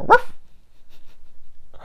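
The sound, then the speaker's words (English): A single loud, sharp bark, a woman's voice imitating a dog, followed by near silence with only faint background noise and the start of another sound at the very end. “Like, she's not more kooky than the rest, aside from the fact that she barks.”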